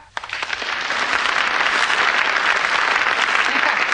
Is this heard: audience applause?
yes